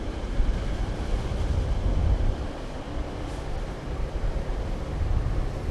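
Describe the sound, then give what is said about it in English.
A steady, broad low-frequency rumble of an elevated commuter train passing out of sight fills the scene, loud and continuous with mild swells, mixed with general outdoor traffic noise and no voices. “One interesting thing that I'll break in, just to break the monotony of listening to silence and traffic noise and the train going by now.”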